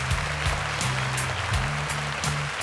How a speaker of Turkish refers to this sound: Destekliyoruz. Alkış.